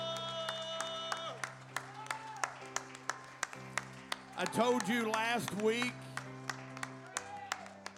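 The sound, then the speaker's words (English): A church audience claps in praise to the Lord with sharp, steady rhythmic claps about twice per second, over sustained keyboard chords, while a voice rises briefly in the middle. “Go ahead and give the Lord one more hand clap of praise.”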